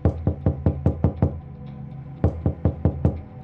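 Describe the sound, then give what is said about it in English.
Police officers pound heavily on a house door at 4:32 a.m.: a rapid burst of about seven loud knocks, a short pause, then another quick series of five or six, forceful with no voices. “Upon hearing pounding at her door, Vicky staggered downstairs”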